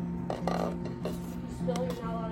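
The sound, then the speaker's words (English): Grape juice trickles into small communion cups, broken by several light clinks and taps of plastic and glass against a steady low hum; no one speaks. “Yeah, you want me to pour this? That one's grape juice. I'm going to pour a few of those.”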